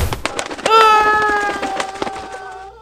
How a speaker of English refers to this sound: Are they attacking the balloon? Shit! Stop! Get away! Stop it, you'll pop the...